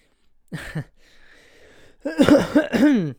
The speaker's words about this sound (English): I want to stop coughing.